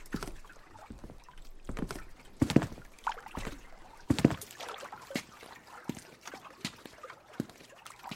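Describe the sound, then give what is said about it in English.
Irregular wooden thumps and knocks as a woman is helped onto a small rocking boat, with scattered creaks and light water sloshing between the louder bumps. “I helped her onto the boat.”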